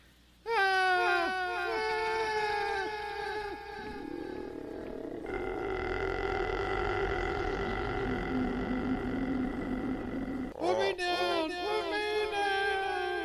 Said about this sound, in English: I hear screaming over there.